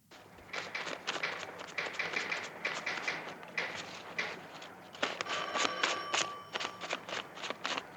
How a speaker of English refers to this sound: Counts out his 10 singles, which in a nice little bit of filmmaking verisimilitude, you know, I had to use the word. I like that the shuffle count you can hear is actually a count of 10. Listen again.